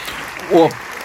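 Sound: audience cheering and applauding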